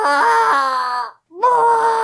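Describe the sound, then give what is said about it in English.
A person's voice imitates the noise an angry chicken makes at people: two loud, strained, nasal squawks, the first wavering and longer, a brief silence, then a steadier high-pitched second cry. “They do is just, like, peck at things on the ground. Yeah. And then they make this noise at you.”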